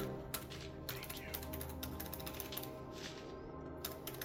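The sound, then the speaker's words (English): A run of quick, light clicks as calculator buttons are tapped one after another in an uneven rhythm to add up dice rolls, fairly quiet over a steady low background hum. “I got to get a calculator to add all the rolls.”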